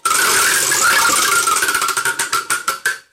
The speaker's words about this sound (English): Spin the wheel, lad.